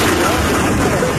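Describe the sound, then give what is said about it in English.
A loud explosion sound effect: a dense, roaring burst of noise with a rumbling low end that fills the whole brief moment without fading, forceful. “At least have your producers get the explosion noise for this segment.”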